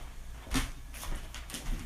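A door shuts with one soft, low thump and a short knock, followed by a few lighter rattling clicks against a quiet background hiss. No one speaks.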